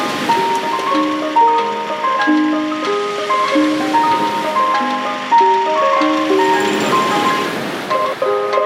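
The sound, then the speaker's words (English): An ice cream van's chime song plays a bright, repeating melody of short tonal notes, heard continuously over a steady wash of surf and wind noise as a big storm changes direction and moves out to sea. “He then went and started the ice cream van song.”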